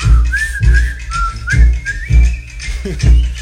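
Someone whistles a wavering, tune-like melody, the pitch sliding up and down, over a steady, heavy low thumping beat that pulses roughly twice a second.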